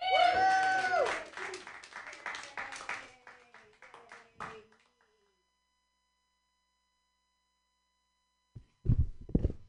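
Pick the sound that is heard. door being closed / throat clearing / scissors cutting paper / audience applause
audience applause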